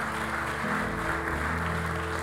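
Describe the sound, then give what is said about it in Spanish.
A church audience claps steadily throughout, giving applause to the Lord after the teaching, a dense, even wash of applause with no breaks, while low sustained musical tones, likely from instruments, hum underneath. “Si usted ha recibido la enseñanza, dale un aplauso al Señor.”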